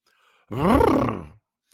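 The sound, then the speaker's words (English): A person imitates a horse with one loud, rough, drawn-out neigh whose pitch swoops up and then slides back down, lasting just under a second, with near-silence before and after. “That's a horse noise, isn't it?”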